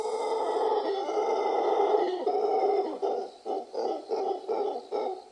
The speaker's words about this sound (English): And there's one monkey in particular called the howler monkey. Have a listen. This is what it sounds like.